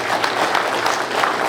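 A crowd applauds steadily, many hands clapping together in a dense, continuous patter at moderate loudness without any voices standing out.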